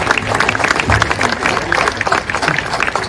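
An audience claps steadily for about three seconds, a dense, crackling wash of many hands at a fairly loud, even level, with no voices rising above it, applauding American Legion post members and a trumpeter at a ceremony.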